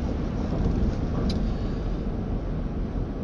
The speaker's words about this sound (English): I am about to miss my exit on the freeway. I am cutting over to 3 lanes of traffic.